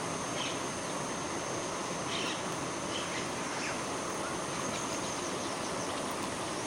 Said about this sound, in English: Coming at you from the side of a river, as you can hear.